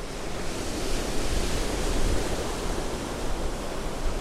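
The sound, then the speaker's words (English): Steady, roaring surf churned by strong wind under gray skies, a dense wash of crashing sea waves and gusting air filling the whole scene without pause, loud, with no voices. “As gray skies drove winds that churned the sea around them, Zion sought out Queen Cyrena to learn more about her visions of the God King.”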